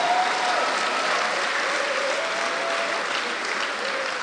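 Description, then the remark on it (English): An audience claps together in sustained, dense applause as a hand clap of praise to the Lord, loud and steady throughout, many hands clapping with a faint voice or tone underneath. “Give the Lord a mighty hand clap of praise.”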